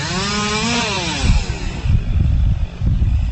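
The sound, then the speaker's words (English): A chainsaw engine revs with a rising and falling whine, then bogs into a rough, low, loud grind as it bites into wood, surging in uneven bursts, as tree branches are chopped up during cleanup on the Disney property in Orlando, Florida. “Yeah, they're chopping up tree branches here on the Disney property as police make regular patrols.”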